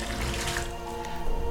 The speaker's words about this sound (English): He stepped into the baths and sank gently below the water's cool surface.